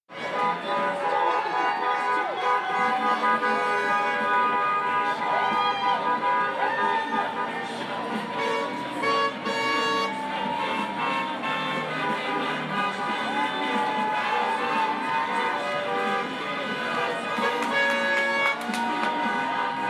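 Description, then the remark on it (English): A loud, continuous street celebration on Saturday, November 7th, after Joe Biden was announced as winning the presidency: many car horns honk and toot over one another without pause, mixed with clanging and a crowd of shouting voices throughout. “But on Saturday, November 7th, when it was announced that Joe Biden had succeeded in winning the presidency, there was only one neighborhood sound, jubilation.”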